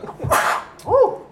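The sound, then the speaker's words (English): A single loud sneeze bursts out with a sharp, breathy explosion, followed by a short voiced grunt or exhale a moment later. “Bless you, brother.”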